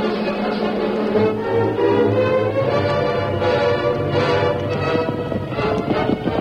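Horses gallop with a steady, rapid drumming of hoofbeats, mixed in with loud, swelling orchestral music that fills the whole stretch; no one speaks.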